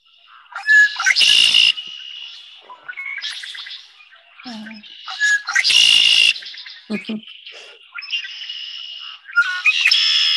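red-winged blackbird song

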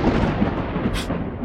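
thunder rumble

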